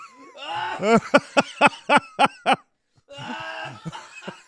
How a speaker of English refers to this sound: I was trying not to spit. Oh, I'm seeing stars. Oh, that was a cough. God, he's looking at me. Oh, my God. Wow. I'm sorry about that. The water went down the wrong pipe.